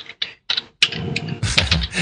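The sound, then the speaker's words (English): Quick clicking keystrokes on a computer keyboard, a few separate taps at first, then a denser run of clattering typing, moderately loud with no voices. “you're not typing into Wikipedia, are you?”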